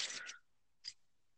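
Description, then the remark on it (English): Keys thrown at a door rattle in a short, bright metallic jangle, then clink once more after a brief pause, with no voices. “Keys rattling. I'm throwing keys at the door.”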